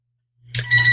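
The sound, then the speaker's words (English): A telephone starts ringing, a bright, loud electronic trill with a steady low hum beneath it, cutting in suddenly after a moment of silence. “Could you hear my phone ringing?”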